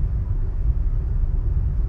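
Steady low road rumble from inside a car driving on the 405 freeway, a continuous deep drone filling the cabin with no voices, holding an even loudness throughout.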